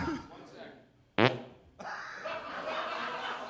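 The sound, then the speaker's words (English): A loud fart into a microphone held up to the face rips out in a single buzzy half-second burst, followed by a swell of laughter and noisy voices that carries on to the end. “You won't eat soup, but you'll fart on a mic and put it right up to your face.”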